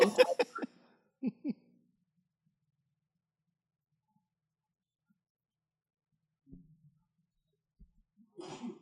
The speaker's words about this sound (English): Bless you.